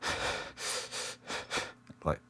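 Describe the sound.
A voice imitates the rhythmic panting breaths of running, four or five quick breathy bursts in a steady pattern, fairly loud, ending with a short voiced sound.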